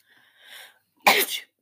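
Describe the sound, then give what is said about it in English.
A single loud sneeze: a soft, breathy inhale builds for a moment, then a sharp explosive burst follows, with no talking around it. “I had to sneeze.”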